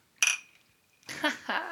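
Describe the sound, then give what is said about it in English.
Glasses clink together once in a toast, a bright ring that hangs for most of a second before fading, followed by a voice starting to talk. “Cheers.”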